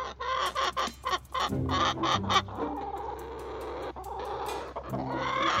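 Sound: chickens clucking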